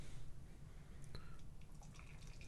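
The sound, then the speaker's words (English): Beer that has been shaken to rouse its sediment being poured into small sample glasses, about 2 ounces each, a steady trickle and splash of liquid with a few brighter gurgling notes as the glasses fill, and no one talking. “I'm going to pour another 2 ounces for each of us.”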